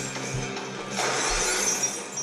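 Window glass shatters in a loud, bright burst of crashing shards that keeps tinkling and scattering for about two seconds, with low thuds underneath and no talking.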